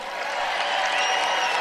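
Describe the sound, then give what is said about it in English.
A crowd cheers about the U.S. women's soccer team losing to Sweden 3-0 in the Olympics, a dense, steady roar of many voices that holds at an even loudness for the whole brief moment, with no single voice standing out. “Listen to them cheer about America.”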